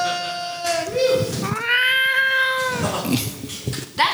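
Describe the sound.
A person imitates a cat with a drawn-out, wavering meow that rises and falls over a few seconds, sung loud, with a shorter mewing sound tacked on at the end.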